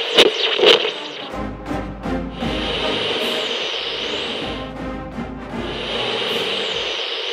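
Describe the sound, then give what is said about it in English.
The University of Iowa fight song blares from a full band, opening with a few sharp percussive hits before brassy, sustained chords and steady drumming carry on loudly without any voices. “I'm always glad to hear the old fight song”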